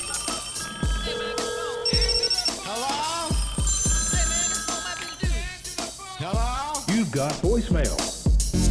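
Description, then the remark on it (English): A telephone rings in a busy, produced hotline intro sting, with steady tonal ring bursts layered over punchy beats and swooping electronic effects, loud and up front throughout. “Let's jump into the hotline.”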